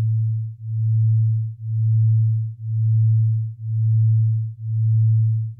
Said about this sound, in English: Binaural beats are what happens when you take two steady tones with slightly different frequencies, so less than 40 hertz between them, and you play one through each ear. So when you listen to both of these tones, you start to hear them wobbling,